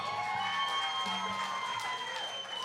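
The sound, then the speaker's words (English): A large audience in Nashville, Tennessee erupts in loud, sustained cheering and applause for a kid, with whoops and high shouts rising over a steady roar of clapping that fills the whole moment. “All right, before he sits in that chair, y'all better give his ass a round of applause.”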